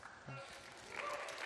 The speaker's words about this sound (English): I don't know why y'all are clapping. But thank you, I guess.